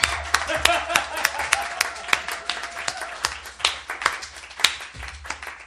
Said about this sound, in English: Impartial judge, who received the winning applause? It was really close.